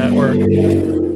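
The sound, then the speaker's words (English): A loud motorcycle engine rumbles with a steady, throaty drone, easing off slightly toward the end as the bike rides out of the shop and pulls away. “There goes one now. Out of the shop. Can you, identify that bike based off its sound?”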